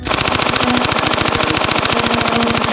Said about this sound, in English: as you're spraying bullets up there, there's wood splinters from these support beams just flying